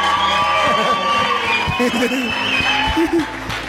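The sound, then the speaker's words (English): A church audience claps and cheers together for an interpreter, with scattered whoops and laughter rising over a steady, loud wash of many overlapping voices. “Let's clap our hands for you.”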